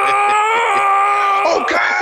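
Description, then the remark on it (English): A man lets out a loud, drawn-out imitation of Will Smith's signature yell, a strained, groaning shout held for about two seconds, with a slight wobble near the end. “Will Smith, he's doing his Will Smith yell that he's back to doing in all his movies.”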